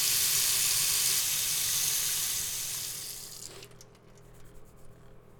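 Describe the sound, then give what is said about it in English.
A sink tap, tested after a repair to stop it dripping, runs water steadily with a broad, hissing rush that gradually fades as the tap is turned off, leaving a few faint clinks and drips. “Okay, let me give it a test.”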